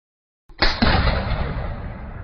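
A single loud rifle gunshot cracks out of silence in a courtyard, followed by a booming echo that rolls on and slowly fades, with no voices.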